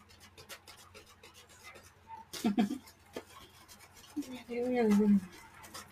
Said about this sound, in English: Just had a cat come in. It's not my camera. But yeah, he just walked in. That was what you heard over here with the door opening and me reaching over and giving a pat.